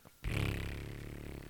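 A loud, sustained fart with a low, buzzing flutter begins abruptly after a brief quiet moment and rumbles steadily for over a second, close to the microphone.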